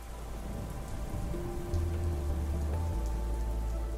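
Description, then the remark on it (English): Steady rain pours down in a continuous hiss, fairly loud, with a low rumble and faint hum underneath and no voices. “It started to rain.”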